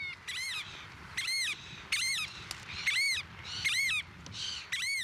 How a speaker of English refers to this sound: You can just hear the bird. Just the last few seconds before 9 o'clock. The variable oyster catcher, Thoria Pungo.